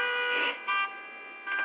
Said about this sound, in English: Right about now, let's check out this crazy traffic.